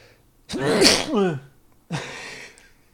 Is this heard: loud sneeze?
yes